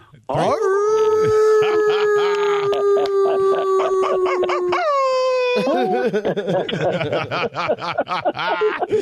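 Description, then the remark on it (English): A caller from Virginia imitates a wolf howl: one long, loud, steady note that climbs in pitch near the end, followed by snickering and chuckling. “How about a respectful greeting, a little 3-2-1 howl?”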